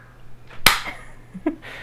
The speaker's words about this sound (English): Okay, shall we clap or tongue pop? Yeah. Okay, let's do it. Okay, 3, 2, 1.